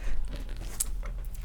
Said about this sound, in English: You crack open a T-Lixer. Ready, guys? On cue. Hold on, let me hold it up to the mic. You crack it open. Ah, look at that. Oh, yeah, that was solid. And you take a good sip.